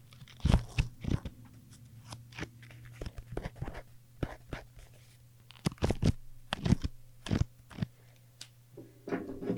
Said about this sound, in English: Do you guys want to hear some ASMR? Here's a stack of Post-it notes.